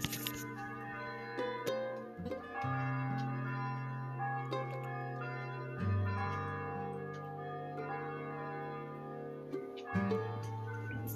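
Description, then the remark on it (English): Church bells in Northeast Minneapolis ring out in a steady peal, their tones overlapping and shifting pitch every few seconds, with long ringing overtones and no voices over them. “And in the meantime, enjoy the church bells in the background from beautiful Northeast Minneapolis.”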